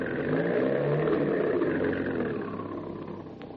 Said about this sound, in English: here comes a Chrysler Coupe now, just rounding that corner